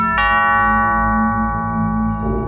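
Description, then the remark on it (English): A doorbell chime strikes once with a sharp onset, then rings on as a bright, steady tone over a low hum, its pitch shifting slightly just before the end. “Then the doorbell chimed.”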